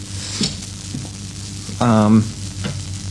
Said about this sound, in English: I wish that frying would go away. Just a sec. No. Yeah, it sounds like something's in a continuous arc. It does, really. Can't get rid of it.